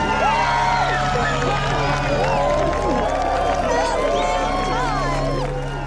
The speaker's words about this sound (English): So everyone's like tailgating and like chanting and cheering for Ted Bundy to be electrocuted. Oh. And he is. His witnesses walked out of the prison to signal Bundy's death. The crowd outside cheered.